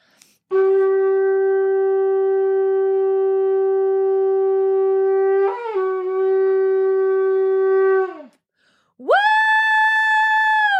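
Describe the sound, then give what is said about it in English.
Two loud, sustained shofar blasts blown together by a group on the count of three, who yell along: a long steady note that wavers and breaks partway through, then after a brief gap a second, higher blast that swells upward and holds to the end. “So on the count of three, we'll blow our shofars together and we'll yell.”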